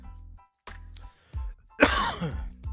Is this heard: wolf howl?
no